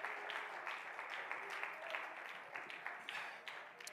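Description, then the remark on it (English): An audience claps hands to praise God, a dense, steady patter of many overlapping claps with a few sharper accents, fairly quiet and continuous, with faint voices mixed underneath. “If you believe that tonight, why don't you clap your hands and praise God?”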